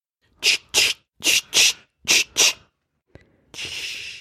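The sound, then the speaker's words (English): A squirt bottle filled with a menthol balm thicker than water sprays in quick hissing spritzes, three pairs of short bursts, then a small click and a longer steady hiss of spray. No one speaks. “And Venui begins to spray.”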